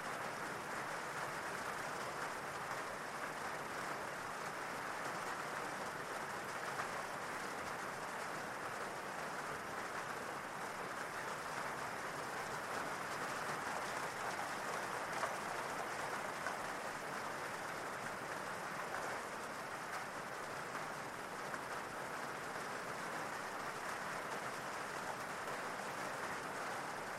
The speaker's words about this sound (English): And the more you listen to the rain, the deeper relaxed you go.